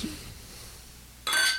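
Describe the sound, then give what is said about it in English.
Beer glasses clink together in a Christmas toast: a sharp chime with a short ring, then a quick second tap, after a moment of quiet. “So Christmas cheers.”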